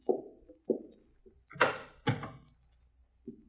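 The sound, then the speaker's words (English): A bedroom door being opened: a series of soft wooden knocks and thumps, then two sharper clattering clunks in quick succession, followed by a final muted bump. “Where's that door lead over here? Bedroom.”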